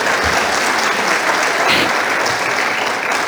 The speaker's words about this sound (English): Would you give her an applause? Because this is awesome.